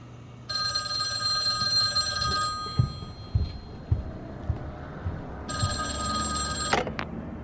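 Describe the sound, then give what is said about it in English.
A telephone bell rings for an incoming call in two long bursts separated by a short pause, bright, over a low background rumble with a few soft knocks and clatters. “And as soon as he did, he called me on the phone, summoning me.”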